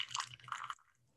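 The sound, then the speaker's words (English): A brief trickle of hot water from a kettle splashing into a tea bowl for under a second. It is a small pour of about a tablespoon that stops abruptly and leaves near silence. “get your hot water. And we're going to pour just a little bit in the bowl, like maybe a tablespoon or something, very small amount in the bowl.”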